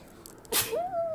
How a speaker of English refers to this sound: Wait, I've just sneezed.